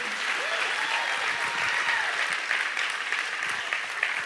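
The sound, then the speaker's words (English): Steady audience applause for a stage prop dad and stage prop baby, a dense wash of many hands clapping at an even level throughout, with faint crowd voices mixed underneath. “I want you to give my stage prop dad and my stage prop baby a round of applause.”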